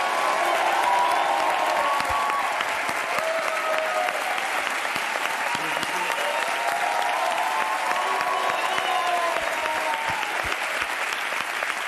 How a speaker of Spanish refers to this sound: Sí, ¡un fuerte aplauso para Ricardo Castaña y Griso!